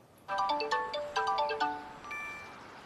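A phone ringtone plays a bright, repeating melody of quick electronic notes, sounding twice in clear rhythmic bursts before tapering off into a sustained tone, with no voices.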